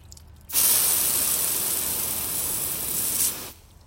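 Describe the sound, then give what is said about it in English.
A garden hose spray nozzle sprays water in one steady, hissing burst of about three seconds, fairly loud, starting abruptly and cutting off cleanly, while watering flowers in a garden, with no voices. “That was the spray nozzle on my garden hose.”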